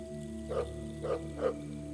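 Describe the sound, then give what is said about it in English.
Three short, evenly spaced, joyful barks ring out from far away, faint and bright-toned over a steady low background hum, with no one speaking. “bark off in the distance draws the Mupits' attention.”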